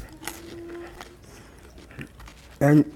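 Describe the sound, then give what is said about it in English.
Soft chewing of communion bread during Holy Communion, with faint irregular crunches and mouth sounds, ending in a brief loud burst of voice. “You told me, Jesus, to eat the bread to remind myself Christ in me, the hope of glory.”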